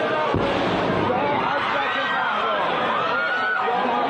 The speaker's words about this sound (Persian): در محل برگزاری مراسم سالگرد کشته شدن قاسم سلیمانی، تنها دقایقی بعد از این انفجار در ورودی مکان موسوم به گلزار شهدای کرمان، دو انفجاری که تا عصر چهارشنبه به گفته مقام‌های رسمی دست کم 103 کشته داشته و بیش از 170 مجروح.